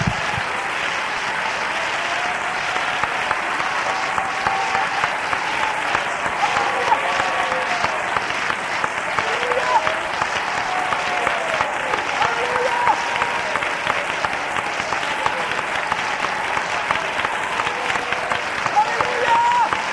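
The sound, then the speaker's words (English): A large crowd claps for the Lord, steadily and loudly for the whole stretch, a dense, continuous wash of applause with faint voices calling out beneath it. “We better clap again for the Lord.”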